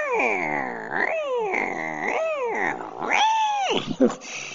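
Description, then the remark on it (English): A cat that was swung around by its tail and thrown screams loudly and repeatedly, a series of drawn-out, wavering yowls, each one rising and falling in pitch, with no talking. “Man, that cat screamed at the top of his lungs.”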